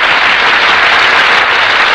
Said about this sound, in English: That applause, ladies and gentlemen, is for our stars who have just entered from the wings.